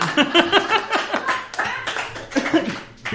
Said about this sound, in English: You're prompting an applause break for a true detective reference.